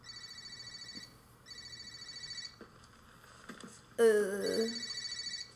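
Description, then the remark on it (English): A cell phone ringtone plays in repeating electronic bursts, steady, briefly overlapped by a short burst of a voice before the ring continues. “Yeah, you forgot your cell phone.”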